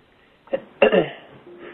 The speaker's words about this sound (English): you hit that mute button and give it a good cough. And that way you can resettle.